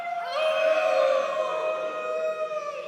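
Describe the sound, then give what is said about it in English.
The audience of Ville Church howls together like wolves during a morning service, a loud, sustained chorus of overlapping wavering tones that swells early and holds steady for nearly three seconds. “Can we please howl?”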